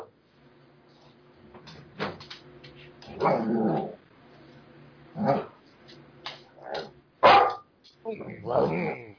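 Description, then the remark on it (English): A female dog lets out several loud, irregular barks, with low rumbling growls filling the gaps between them, while a movie with a dog in it plays. “That's why she's barking.”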